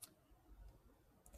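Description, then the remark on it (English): Soft keyboard typing by someone who is talking at the same time, a few scattered key clicks with a short burst near the end, quiet over a faint low background hum. “And talking and typing at the same time.”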